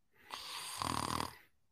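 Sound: voice imitating snoring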